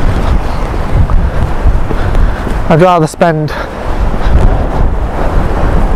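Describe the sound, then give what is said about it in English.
Strong coastal wind roars steadily across the microphone with a low, buffeting rumble, while a man speaks briefly over it in the middle. “more time here when it's less windy early in the morning.”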